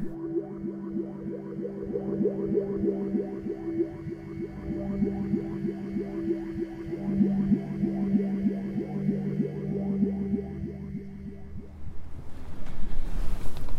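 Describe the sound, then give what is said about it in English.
Steady outdoor wind on a cold last day of February at the Church of the Ascension in Westminster, Maryland, rumbles and buffets the microphone, with a low droning hum running underneath; the gusts grow rougher and louder near the end. No one speaks. “It's the last day of February. Yes, last day of February. Cold and windy.”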